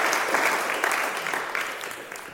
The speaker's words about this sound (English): If you could please give a round of applause for our panelists tonight.